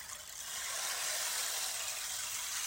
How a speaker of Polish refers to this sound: A propos wody, mam jeszcze tutaj taki piękny instrument, który jest z drewna, a w środku ma kamyczki i nasiona, które się przesypują pod wpływem obracania tym krążkiem.